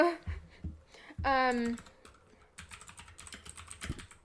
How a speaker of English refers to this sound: Oh, keyboard. I gotta use my big clicky clacky keyboard.